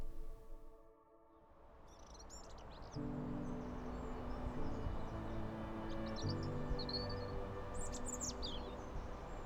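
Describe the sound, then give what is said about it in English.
Birds chirp and sing in scattered bursts after a heavy rain shower, over a steady, dense background hum of insects and ambient noise, with no voices present. “After the rain fell, the birds came out to sing.”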